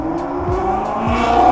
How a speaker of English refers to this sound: Sorry about the motorcycle without a muffler.